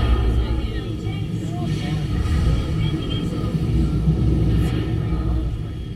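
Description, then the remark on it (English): A steady, heavy low rumble with a rushing roar of water flooding a submarine's main ballast tanks as it dives, holding an even loudness for the full stretch with faint higher hiss above. “Flood the main ballast tanks.”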